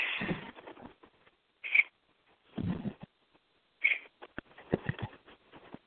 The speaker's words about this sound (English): Pony birds. Pony birds. Come here. Fellas. Explain why you're so tweety tonight.